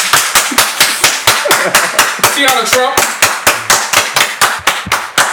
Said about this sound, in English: Let's get to it! Round of applause.